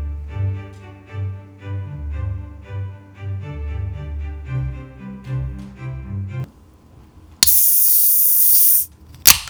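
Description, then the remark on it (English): A loud, steady sizzling hiss bursts in for about two seconds after a stretch of melodic music fades out, followed by a brief second hiss at the end. “That one had some sizzle on it.”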